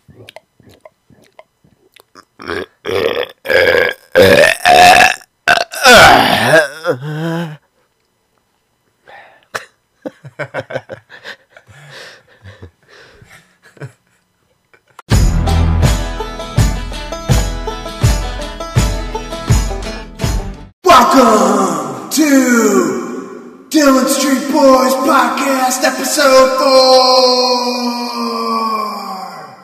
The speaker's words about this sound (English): We also have a little bit of ASMR for all you freaks out there that like people chewing on food. Yeah, we're going to chew on some food.